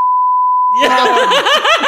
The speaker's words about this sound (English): Oh God! I have to beep that out. Oh no, I'm sorry.